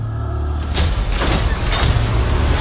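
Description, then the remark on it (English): A door slides open with a pneumatic hiss and a mechanical rush over a steady low engine rumble, with no one speaking. “Mind the doors. A ghost just opened our door.”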